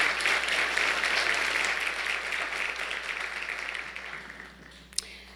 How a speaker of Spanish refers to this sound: Podemos aplaudir a nuestro Señor Jesucristo.